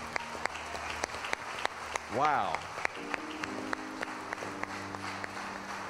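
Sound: audience hand clapping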